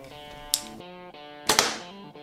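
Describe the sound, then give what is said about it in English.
A compound bow set at a 29-inch draw fires a 450-grain arrow at 296 feet per second with a sharp snap, followed about a second later by a second crisp smack, both heard over steady background music. “Next arrow, 450 grains.”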